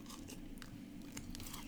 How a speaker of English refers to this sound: Okay, we're chewing it.